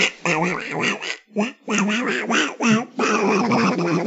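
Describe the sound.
A person does a loud Donald Duck voice impression, a stream of raspy, quacking, garbled syllables with a brief pause partway through.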